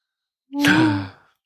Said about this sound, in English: I know. Gasp.